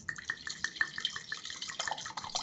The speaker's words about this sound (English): Sorry, I was just listening to your nice pour. Hypnotizing. It is.